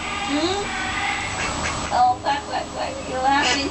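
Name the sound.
duck quacking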